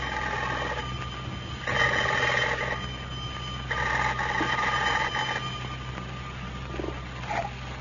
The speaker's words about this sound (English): The telephone is just ringing. Listen.